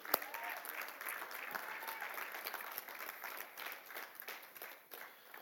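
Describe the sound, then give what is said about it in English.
A large group at a church service claps and applauds steadily in praise, a dense wash of many hands sustained at even volume throughout, with a faint background hum and no one speaking over it. “Let's just take a few seconds and just clap and just show pure joy.”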